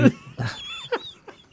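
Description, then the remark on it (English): A person gives a nasal, strained bleat in imitation of a goat, a short wavering "meh" followed by a couple of quieter breathy vocal bursts. “I want to look him straight in the eyes, and I just want to go, meh.”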